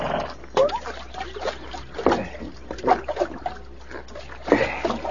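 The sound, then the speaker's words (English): Stream water sloshes and gurgles into canteens as they are filled at a water hole, in several uneven splashing bursts with brief pauses between them over a steady low rumble. “We'll water them after we fill the canteens.”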